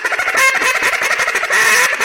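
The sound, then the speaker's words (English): A duck call blown in rapid feeding chatter to start building a feed call: a fast, steady stream of clipped, raspy ticking notes, loud, with no voices over it. “So to start building a feed up, we're just going to do those chatter.”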